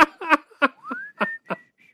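A person whistles a short tune, sliding up into a sustained note and then a higher one, while bursts of laughter break in between and over the whistled notes.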